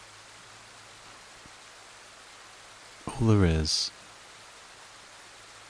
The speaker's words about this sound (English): is the sound of the rain gently coming down.